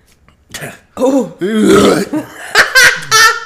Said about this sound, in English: Bro, that burp stung.